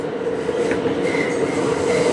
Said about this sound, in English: On the E-train, honey. And the E-train, honey, honey, honey.